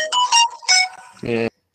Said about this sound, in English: Can hear my fucking ringtone.